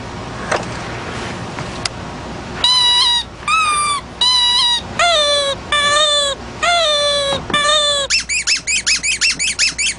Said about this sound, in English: Okay, so if it's like they're vacuuming the stairs, and you'll hear a short squeak, squeak, squeak, and longer vacuuming makes longer squeaks.